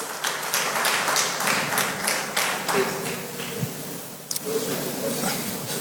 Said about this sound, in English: a round of applause for the man of God.